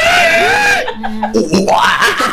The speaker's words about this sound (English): Internal screaming intensifies.